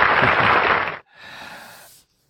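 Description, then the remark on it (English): A short applause sound effect: a loud burst of dense, crackling clapping for about a second, then a softer, thinner stretch of clapping that fades out. No one speaks. “Here's some applause for that.”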